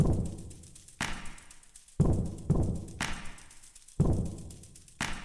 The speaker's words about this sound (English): So all the drums you hear, which kind of sound like clapping, are mops and brooms and brushes and cleaning supplies.